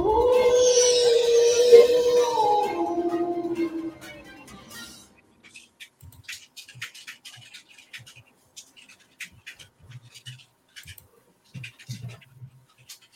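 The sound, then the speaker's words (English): A dog lets out one long, loud howl, its pitch sliding downward over a few seconds, then fades to quiet, scattered scratching and clicking noises. “Find your pack and howl.”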